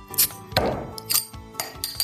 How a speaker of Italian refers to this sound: Apri quella birra, che facciamo un brindisi al nonno.